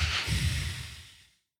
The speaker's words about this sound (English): And if we now inhale as much as you can once, and then you continue and inhale even more, and then you do a forceful out breath through the nose.